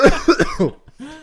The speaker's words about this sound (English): Excuse me, I got a cough.